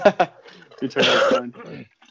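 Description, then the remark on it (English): Two quick sharp coughs from a person with a drying throat, followed by a rough, drawn-out throat clearing that rumbles for about half a second before trailing off into quieter hacking. “So I've been like coughing all day long, and I'm trying to choke you back right now.”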